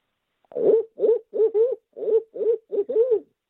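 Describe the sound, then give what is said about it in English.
A man imitates an owl with his own voice, giving a quick run of about seven hooting calls in a steady rhythm, fairly loud with nothing else behind them. “Give us that natural voice owl hoot.”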